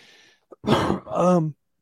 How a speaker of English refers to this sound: excuse me, I'm having the cough today.